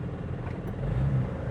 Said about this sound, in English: Let's get the fucking car out of the house now. I don't know if I'm going to be able to eat and podcast. Wow, that's loud. Is it?